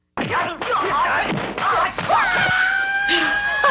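Harsh, screeching electronic tones sweep and wail, then settle into sustained piercing notes under a noisy, crashing wash: the short logo music of a video game. Loud and continuous, with no one talking.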